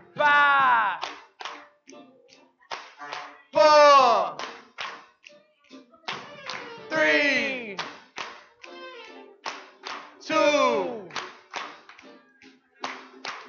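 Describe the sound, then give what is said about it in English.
An audience claps in scattered, uneven bursts while voices cheer and whoop in loud, swooping cries that slide downward in pitch over the applause. “Give yourselves a hand. Clap for yourselves.”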